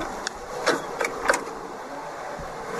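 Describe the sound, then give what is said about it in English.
A Rolls-Royce car boot opens with a few sharp mechanical clicks and clunks spaced through a steady low whirring hum, with no one speaking. “Then he opens up the trunk of the car.”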